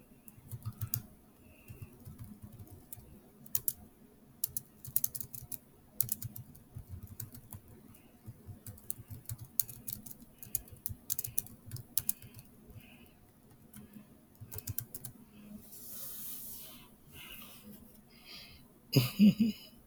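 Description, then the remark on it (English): Steady typing on a computer keyboard, quick irregular clicks and clacks in bursts with brief pauses, moderately loud, ending with a heavier thump or two. “Right now I'm typing.”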